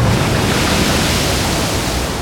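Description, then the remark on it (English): A steady, dense wash of ocean waves rolling at sea at night in the southern Arabian Sea, lifting and lowering a gray supertanker over 300 meters long; a loud, continuous hiss and rumble with no distinct breaks and no voices. “A long, gray supertanker, stretching over 300 meters, rose and fell with the cadence of the rolling waves.”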